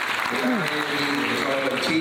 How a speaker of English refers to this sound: Hong Kong, people from Hong Kong are here, right? China. Let's applaud them.